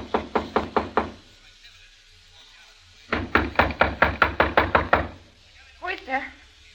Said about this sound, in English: He wound me through a couple of streets and ended up at a small hotel called The Dynasty. He disappeared into room 212. A few seconds later, I knocked on the door.